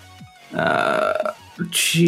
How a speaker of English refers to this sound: Did you just burp?